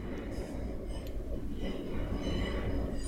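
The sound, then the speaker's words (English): A train rumbles steadily along the tracks, with thin, high metallic squeals drifting in and out above the heavy low roar. Continuous, no clear voices. “Anyway, I think our outro from now on should just be the sound of squeaking train tracks.”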